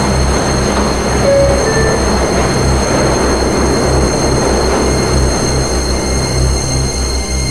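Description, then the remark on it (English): A Queens-bound E subway train running via the F line, next stop 42nd Street–Bryant Park, pulls out with a loud, steady roar of rumbling wheels and a deep motor hum, a few brief high squeals rising early on. No one speaks. “Is a Queens-bound E-train via the F line. The next stop is 42nd Street, Bryant Park.”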